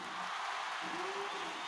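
A played sound effect of people cheering: a dense, steady wash of crowd noise, people cheering and clapping together in a continuous hiss-like roar, with a brief tonal shout rising out of it midway.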